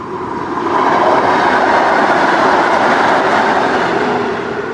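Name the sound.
train travelling on rails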